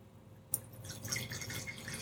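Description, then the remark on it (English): Wine, a 100% Grenache, pouring into a glass set a little farther away, starting with a sharp clink and continuing as a steady gurgling splash, moderately quiet, with no voices. “You can tell my glass is a little further away.”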